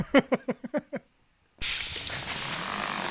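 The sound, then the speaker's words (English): A quick run of six short, tonal button blips as buttons on a terminal are pressed, a brief silence, then a sudden loud, steady hiss that holds unbroken to the end. “There's a curious hissing noise as you press buttons.”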